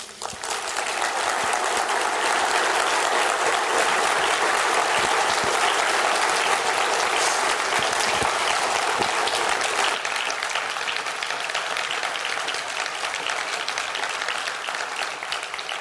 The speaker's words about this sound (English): And thank you all for the applause that you gave him.